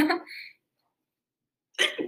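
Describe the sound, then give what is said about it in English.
A sharp human sneeze bursts out after a brief pause of silence, preceded by a short breathy vocal sound at the start. “oh my god, I gotta sneeze again.”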